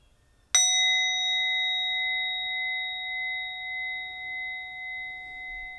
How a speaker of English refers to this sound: And as we end this meditation, I invite you to take 3 deep breaths as I invite the bell.